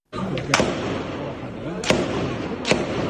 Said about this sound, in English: A storm of gunfire and tear gas in a packed urban refugee camp. Israel's raid began early this morning. More than 100 military vehicles entered the camp, say witnesses.